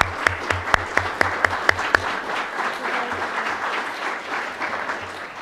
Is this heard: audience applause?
yes